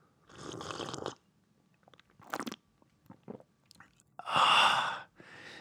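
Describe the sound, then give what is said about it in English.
Close-miked sipping of coffee: two loud, airy slurps with small wet swallowing and lip clicks between them, and a softer slurp trailing at the end. No one speaks. “I'm gonna take a little sip of this coffee. It's right up at the front for you guys.”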